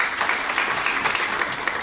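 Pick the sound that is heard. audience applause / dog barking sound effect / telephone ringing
audience applause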